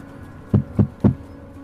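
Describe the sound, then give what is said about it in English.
Three firm knocks on a door, evenly spaced, with dull low thuds and quiet room tone between and after them. No voices. “Yep, and gonna knock.”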